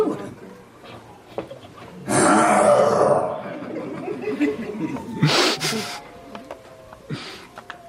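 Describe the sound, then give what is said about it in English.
A voice mimics snoring with a loud, rasping snort that drags on for about a second, followed by quieter breathy puffs and some murmured speech. “When they are snoring, they are worrying.”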